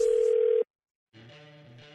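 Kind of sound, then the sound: signal or alarm, telephone dial tone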